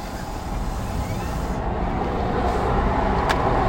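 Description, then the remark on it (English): Steady road traffic rumble heard from a car sitting in heavy traffic on the road, a dense continuous low-frequency roar with passing vehicle noise, fairly loud throughout, with a brief high click near the end. “Right now we're sitting in hell a lot of traffic.”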